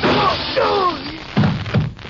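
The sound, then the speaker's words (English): A gunshot cracks through a window and shatters a lamp: two loud, heavy thudding bangs follow a brief ringing, sliding tone, with a crash of breaking glass. “No, a bullet did it for him. It came through that window.”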